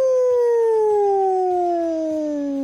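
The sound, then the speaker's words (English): A single long wolf howl, steady and loud, sliding slowly downward in pitch as it holds for nearly three seconds, with no voices around it. “The Wolf. Ow, ow, ow!”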